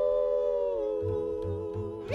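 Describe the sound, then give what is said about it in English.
Human voices howl in imitation of coyotes as part of a cowboy-themed song: a long, loud sustained wail that slides downward, followed by a few shorter yelping howls rising at the end. “We're gonna hoot and holler and howl at the moon.”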